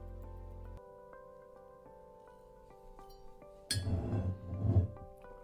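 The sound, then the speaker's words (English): Glasses of Woodford Reserve whiskey clink together in a toast during a tasting, a bright ringing tone lingering before a louder burst of clattering glass and handling noise. No one speaks. “Okay, cheers.”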